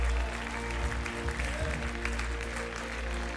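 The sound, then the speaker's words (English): A church audience claps together as a clap offering of praise to the Lord, in a steady, dense wash of applause that holds at an even level throughout, with no voices standing out above it. “If you believe that, give the Lord a clap offering of praise.”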